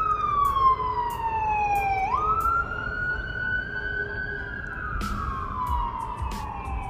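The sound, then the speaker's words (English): A loud ambulance siren wails, its pitch gliding down then jumping up as it passes, over steady traffic rumble with no one speaking. “Excuse me, there's an ambulance driving by, so let them do their thing.”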